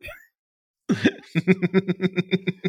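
A voice lets out a deliberate, exaggerated fake cough, then a quick rhythmic run of about ten short, voiced bursts, fairly loud, with no other talking.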